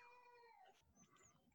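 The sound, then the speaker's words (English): A child's high, wavering scream slides downward and fades after about half a second, followed by a few thinner, fainter shrieks over a low background rumble. “Sorry, kids screaming. There's a bunch of pandemonium going on.”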